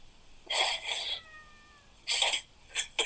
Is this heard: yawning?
no